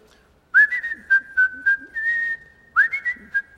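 Someone whistles a bright, bouncy little melody, with quick repeated notes, a longer held phrase in the middle, and another lively run of notes at the end. No talking.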